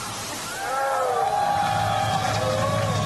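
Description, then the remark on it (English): A modest crowd of graduates, Princeton classmates being addressed by General Mark Milley, shouts and cheers, a thin, scattered burst of voices rising briefly and sustaining for a few seconds with some echo. “My classmates from Princeton, so maybe we could hear you shout.”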